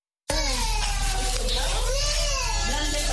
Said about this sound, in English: who is crying along with other children crying in a ward at Al-Sheba Children's Hospital in Juba, where they are being treated for malnutrition.